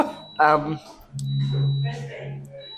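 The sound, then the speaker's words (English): A thin, high-pitched electronic machine beep sounds steadily in the background, stopping and restarting a few times, while voices talk and hum over it at a louder level. “If you're blocked in there for days, that beep in the background is really annoying, isn't it, listener?”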